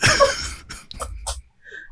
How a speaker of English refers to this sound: Excuse me, I have a smoker's cough.